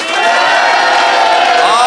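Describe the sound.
A live audience bursts into loud, sustained cheering and applause, a dense wall of voices and whoops filling the space for a couple of seconds, applauding to vote on which side made the better case.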